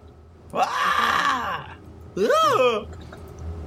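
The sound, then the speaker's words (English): A person lets out two loud, drawn-out screams: a long wavering cry, a short pause, then a shorter rising-and-falling shriek. “The barkeep when he sees the living puddle goes ah, and he like runs back into the kitchen. I will have scream.”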